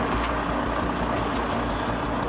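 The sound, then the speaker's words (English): A heavy truck engine rumbles steadily as the truck arrives at a weighbridge, a dense low drone with broad mechanical noise, sounding like a large vehicle pulling in and idling. No voices are heard. “a second truck belonging to Morris arrives at the weighbridge”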